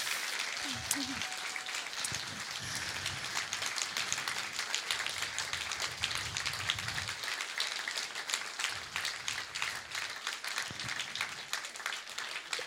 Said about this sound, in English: So can we give them a round of applause and appreciation?